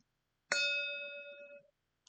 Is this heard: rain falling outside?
no